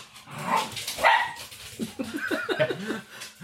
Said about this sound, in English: The dogs, it's Fenrir and the dogs playing, it's fine. I can hear that. Up in the distance. It's fine.